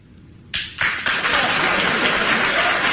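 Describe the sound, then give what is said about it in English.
Applause from Bill Maher's studio audience follows his remarks on cancel culture, breaking out after a moment of near silence and quickly swelling into steady, full clapping that carries on loudly to the end. “Yeah, I guess we're supposed to clap here because we don't actually agree with you.”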